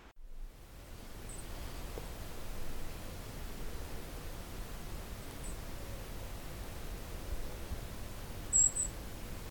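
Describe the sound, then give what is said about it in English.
A few tiny, very high-pitched contact calls from a golden-crowned kinglet, sparse and widely spaced over steady background hiss, with the last burst of calls clearest and loudest. “They're constantly giving these CCC calls. Here's the golden crowned.”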